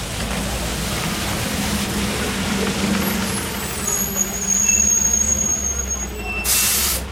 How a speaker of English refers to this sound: This is Dudley Square, an historic inner-city neighborhood in Boston. A large outdoor bus depot here is operated by the Massachusetts Bay Transportation Authority, known to everyone as the T.